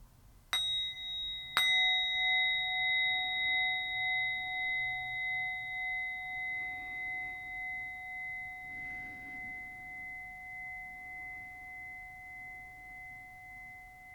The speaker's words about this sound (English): And finally, we're going to end this practice today by inviting the bell. And so as I invite the bell, I invite you to take 3 deep, full breaths.